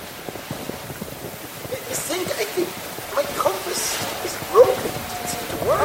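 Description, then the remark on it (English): Short, squeaky electronic yelps chirp out a few times over a steady windy hiss, a robot husky dog yipping and barking, growing slightly louder toward the end. “Engaging robo huskies. Squeaky yelpy noise, woof.”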